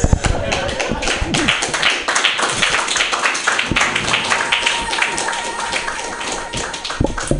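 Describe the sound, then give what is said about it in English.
An audience applauds steadily for several seconds after a comedy set, a dense, loud wash of many hands clapping, with a few voices mixed into the crowd noise. “Didn't you have to ask for the applause?”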